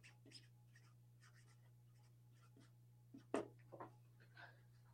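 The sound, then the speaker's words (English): A pen scratches across paper in a quick series of short, irregular strokes as someone writes a name, with one sharper stroke near the end and a steady low electrical hum underneath. “Here, let me put Rod's name on it.”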